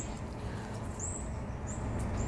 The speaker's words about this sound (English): Wow, these birds are on today. One just shot to the left. I don't know what the heck is going on outside today.